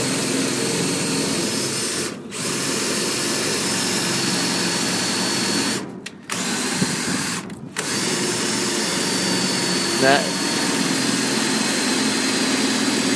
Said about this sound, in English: is now drilling the lock. I kind of, I haven't heard a pop yet.